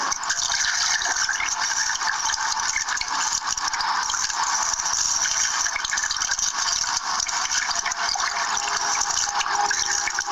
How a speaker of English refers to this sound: Now it's light and it starts flooding. You can't realize what your house is like when it starts flooding. Everything floats.